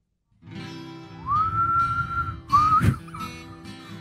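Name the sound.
human whistling a tune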